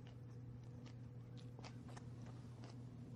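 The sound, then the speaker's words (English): Irregular crunching bites of crisp broccoli being chewed, a series of sharp snaps and munches over a steady low background hum, with no talking. “I never make noises like this when I'm eating steak.”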